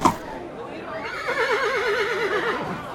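A horse pulling Fred and Chester's wagon down Bridge Avenue whinnies once, a drawn-out, wavering neigh that trembles up and down for over a second before fading, clear.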